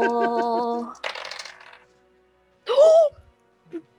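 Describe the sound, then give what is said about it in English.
Dice rolled for an attack clatter across a table in a quick, bright rattle lasting under a second, landing a natural 20, between a sustained voiced tone before it and a short excited vocal burst after. “All righty. Let me roll.”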